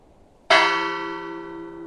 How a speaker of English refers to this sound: And it did not have a light for quite a few years until, I believe it was 1900, that the light was added to the bell station. And so the whole purpose of the lighthouse there was the fog bell.